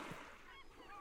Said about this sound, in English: There's a lot of birds. A lot of birds. I didn't think there'd be this many birds. Yeah. It's kind of off-putting.